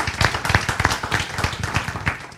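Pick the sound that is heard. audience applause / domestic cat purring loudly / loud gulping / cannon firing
audience applause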